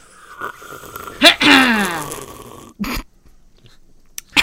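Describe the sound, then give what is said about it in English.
A single long, croaky burp after drinking a watermelon-scented drink, drawn out over about a second, dropping in pitch as it goes, fairly loud, with a few short mouth and throat noises before and after. “There's so many sounds of me. Dude, clearing my throat, coughing, burping.”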